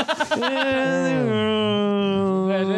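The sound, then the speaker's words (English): After a few quick breathy bursts, a person hums a song melody, holding one long sustained tone that slides down and then settles, steady and fairly loud, with no words. “I'll hum it.”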